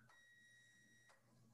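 A kitchen appliance gives one sustained electronic beep lasting about a second, fairly faint and steady-pitched, over a low background hum with no one speaking, while someone is making food.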